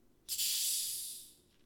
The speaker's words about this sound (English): That was a pretty decent fizz.